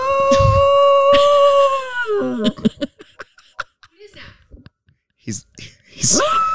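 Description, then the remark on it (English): A dog, Maggie, lets out a long, sustained howl at fire truck sirens for a couple of seconds, loud, before it breaks off and hushed voices talk over scattered small noises. “Dude, there's Maggie, fire trucks, and she's howling.”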